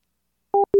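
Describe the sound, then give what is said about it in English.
After a moment of silence, a telephone line tone sounds once the call ends: a short steady beep, a brief gap, then a second steady tone that carries on. No one speaks. “And she hung up.”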